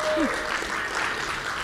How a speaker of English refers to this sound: By the way, can we give a hand clap to his parents